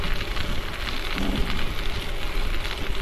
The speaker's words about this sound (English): Whew, it is so windy, man. It's a struggle riding today. Struggle. Hard work.